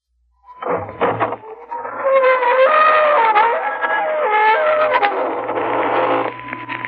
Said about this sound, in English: Good evening, friends of the Inner Sanctum. This is your host, inviting you in through the squeaking door. Come in, won't you?